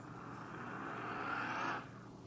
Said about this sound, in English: We'll continue when I back this car up, which I just did. This car around.